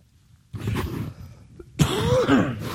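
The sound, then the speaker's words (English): A person coughs in two bursts: a rough, harsh cough, a short pause, then a louder hacking fit with a strained, voiced edge. “Oh, I swear someday I'm going to get a hernia just by coughing.”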